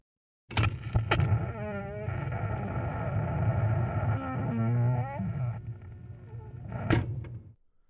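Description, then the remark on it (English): The Guardian car drives by with a steady low engine rumble and a whining pitch that rises and falls as it revs. Sharp clunks sound at the start and again near the end before it cuts off. “Why, with the Guardian car, of course.”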